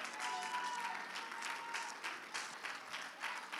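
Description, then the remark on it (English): An audience in a church in Indiana claps their hands for Jesus in sustained, dense applause, a steady crackling wash of many palms with small swells in loudness throughout, no voices standing out. “Let's clap our hands for Jesus, because he's the reason we are here.”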